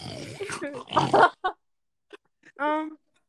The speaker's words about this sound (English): Oh, sorry, guys. My pig came in the room. Go away. Damn piece of bacon.